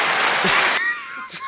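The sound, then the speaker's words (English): A brief burst of canned applause from a sound button, dense and loud for under a second before cutting off abruptly, followed by a voice speaking. “No, keep it going. It all deserves applause.”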